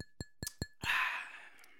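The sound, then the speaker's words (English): Glasses of a high-alcohol drink clink together in a toast, four quick bright taps with a high ringing tone, followed by a louder, longer wash of hissing noise that slowly fades. “Just for the clink.”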